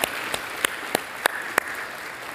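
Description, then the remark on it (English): Light, scattered audience applause: a handful of sharp, separate claps at an uneven pace over a soft background hiss, with no one talking. “You can applaud them.”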